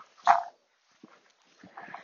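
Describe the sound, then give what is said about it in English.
A dog being walked outdoors barks a few times at a distance: one sharp bark, a brief pause, then softer, rougher barks toward the end, with no talking. “Well, there's another dog walking in the distance.”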